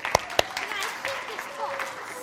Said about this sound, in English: Thanks so much, guys. Should we give a round of applause?